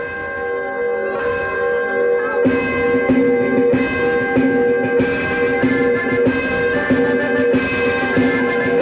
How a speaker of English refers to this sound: And it starts with church bells for some reason.